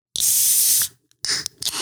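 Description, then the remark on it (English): A sharp burst of fizzing hiss from a warm can of Kickstart being opened, followed by a short pause and further sputtering bursts of foamy spray. “Okay, I'm going to open this up. This is a warm kickstart that I've had since 9 a.m.”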